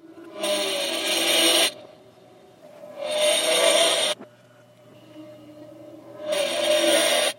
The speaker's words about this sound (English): This is a broken radiator, not exactly music to the ears